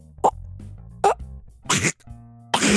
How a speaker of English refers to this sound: yeah, it's like that dog coughing. Because the dog just fucking licks everything. Like licks the floor. Of course, gets all the hair and dirt on the floor. So naturally, it's always like... it's trying to cough. Something is stuck in its throat.